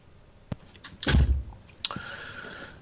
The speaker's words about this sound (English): You might have heard the microwave oven going in the background there.